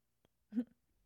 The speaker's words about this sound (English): The bottle is weird. The bottle is shaped weird. So when I'm like drinking, it's like glug, glug, glug, glug. I'm not even glugging it. Like it was like I'm sipping it. It sounded like that.